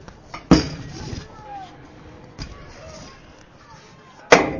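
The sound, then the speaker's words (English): A chair being pushed in right by the crowd mic at a football game broadcast, heard as three sharp, loud wooden knocks and clunks spaced a couple of seconds apart over a low background murmur of voices. “And obviously somebody can't figure out how to put their chair in, and they're right by our crowd mic.”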